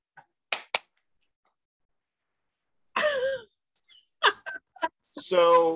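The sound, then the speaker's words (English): Two quick, sharp hand claps, demonstrating how a panelist clapped when other people on the panel won, ring out in near silence, followed after a pause by a person's brief, expressive vocal sounds. “And they were like, okay, when the other people on the panel, when they win or something, go, clap your hands.”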